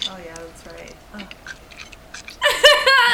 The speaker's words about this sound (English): his little chipmunk mouth trying to chew up the turkey.